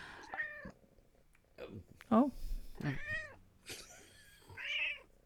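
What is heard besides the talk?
cat meowing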